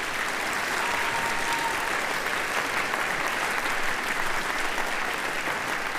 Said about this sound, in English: All right, how about another big round of applause for the Rotolo Middle School Symphonic Band